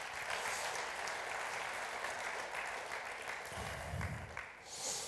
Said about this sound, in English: Let's applaud the Lord Jesus Christ for that.